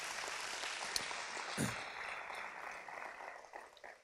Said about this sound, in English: Can you just clap to the Lord for that, what he's doing?